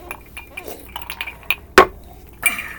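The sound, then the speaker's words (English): Ice cubes clink against the side of a glass of water in several short, bright taps, with one louder knock near the middle, over faint murmuring. “Your water tastes weird. It's also ice cube.”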